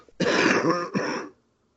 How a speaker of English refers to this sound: Okay. Sorry. Mute your mic if you're going to cough. Yeah, sorry.